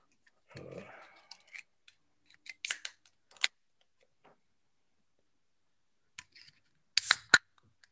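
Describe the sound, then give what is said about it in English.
A gaming chair creaks and clicks in short, scattered bursts as it is moved back and forward, with sharp crackling snaps between quiet pauses and a louder cluster of creaks near the end. “I got a new setup, so I have my son's gamer chair, and it's, I don't think he uses it very much because it's like every time I move it back and forward, it like creaks.”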